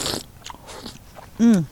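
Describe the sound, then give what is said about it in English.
Someone eating Olympia oysters with a couple of friends: a quick wet slurp and a few soft, crunchy clicks, followed by a short, loud, falling voiced murmur of appreciation. “eating oysters with a couple of friends.”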